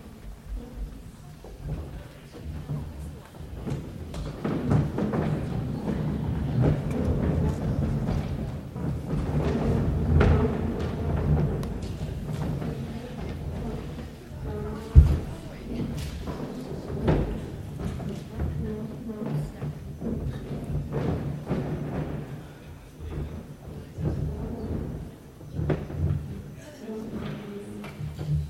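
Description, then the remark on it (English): A crowd shifts and turns chairs around: continuous scraping, shuffling and knocking of furniture for about half a minute, with scattered thuds, one sharper bang midway, and soft murmuring voices underneath. “Grab your chairs. Let's turn around again.”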